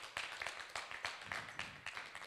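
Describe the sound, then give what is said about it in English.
An audience claps together, a steady patter of many overlapping hand claps with a few sharper accents, fairly soft, with no one talking. “Yeah, you guys can clap for that.”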